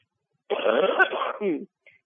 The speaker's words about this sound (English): Pardon me, I cough from time to time.